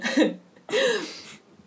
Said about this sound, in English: I gotta clear my throat after that Mothman voice.